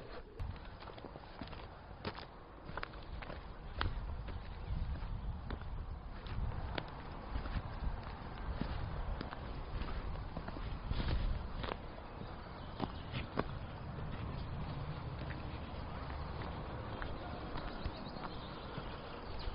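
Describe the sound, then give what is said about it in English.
Steady footsteps crunch along a woodland path while walking down through the hills from the top of Sutton Bank, through Hambleton Plantation, a commercial woodland, on a day with very little wind. A regular walking rhythm, fairly loud from start to finish, with no voices and only soft outdoor ambience beneath. “Today I've parked at the top of Sutton Bank, and I'm walking down through the hills to the point where I finished last time.”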